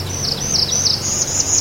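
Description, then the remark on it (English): A thin, high song from a bird with a bicolored bill, blue on top and yellow on the bottom, trills continuously, wavering with small dips and gradually rising in pitch to a sharp cutoff at the top, heard clearly over a low background rumble with no one talking. “The songs vary from bird to bird and region to region, but they all ascend in pitch and have that sharp cutoff at the top.”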